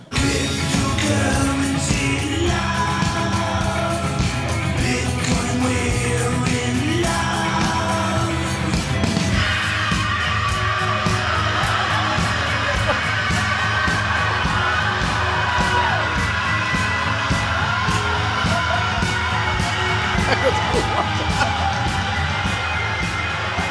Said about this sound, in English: That's a good scream. Yeah. That's a long scream. Like he fell off a cliff in a cartoon.